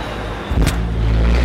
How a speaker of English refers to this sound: There's a truck.